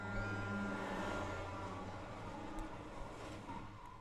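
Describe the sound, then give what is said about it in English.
A heavy truck engine rumbles steadily, a deep, loud drone with harmonic tones that holds for several seconds without any talking. “Oh no, truck.”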